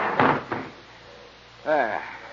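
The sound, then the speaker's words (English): A train compartment door on a train in France slides and shuts with two solid clunks, the second shorter, followed by a quiet pause and then a person beginning to speak. “I'll just pick it up on the rack. There we go. And shut the door.”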